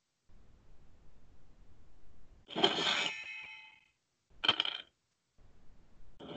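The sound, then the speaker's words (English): A dice rolling sound effect during a combat turn in a game, rolling a 9: a bright, rattling clatter that rings out for about a second, then a shorter second clatter, set over a faint low rumble with no talking. “Oh, we roll dice?”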